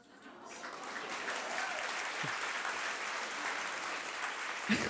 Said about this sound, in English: That wasn't supposed to be a prompt for applause.